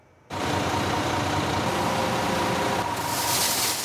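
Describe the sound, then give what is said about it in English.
Road maintenance crews load trucks with salt in Metro Vancouver in the morning: a heavy truck engine rumbles steadily while a dense, rushing pour of salt fills the air, growing brighter and hissier near the end. No one speaks. “Road maintenance crews were raring to go this morning, busy loading up trucks with salt to disperse across Metro Vancouver.”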